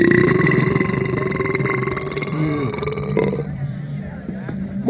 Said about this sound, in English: That was a pretty good burp there, bud. That was great. It's like the elf burp.